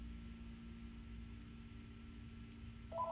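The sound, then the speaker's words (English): A steady low electrical hum fills the background, then near the very end a phone's warbling electronic ring suddenly starts, loud, cut off almost immediately. “Got a phone call.”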